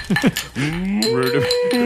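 A cow moos loudly, a long drawn-out low call that swells and holds for over a second, preceded by a couple of short rising grunts.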